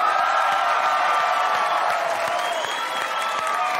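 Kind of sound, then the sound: crowd, studio audience cheering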